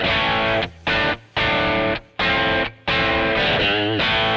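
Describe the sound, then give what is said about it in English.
An overdriven electric guitar through a Plex Drive amp profile on its Crunch setting plays crunchy chords in short bursts with brief gaps between them, loud and gritty with a thick, saturated tone and a bendy note near the end. “Number two is crunch or overdriven. This one's called Crunch.”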